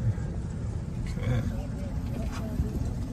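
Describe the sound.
The starting gate car at a horse race drives steadily along as the horses get closer, its engine giving a continuous low rumble throughout, with faint, indistinct voices briefly audible over the motor noise.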